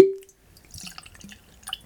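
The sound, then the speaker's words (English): A glass rings with a short clink, then Barrel New Year whiskey trickles and splashes into it in small gurgling bursts, fairly quiet, with no talking. “So I actually have tried a little bit of this already, but I'm gonna go ahead and pour some more so we can get into the review.”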